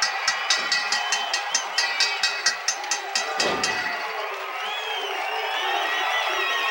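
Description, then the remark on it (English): A large crowd cheers loudly for Hacksaw Dugan's victory, with steady rhythmic clapping or stomping for the first few seconds, then it swells into a continuous roar with high whistles cutting through. “Look at this crowd, boy. Look at him stand.”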